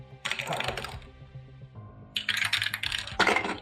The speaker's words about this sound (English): So now, you guys are going to roll for initiative.